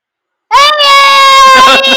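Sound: young child screaming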